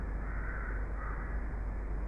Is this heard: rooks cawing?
yes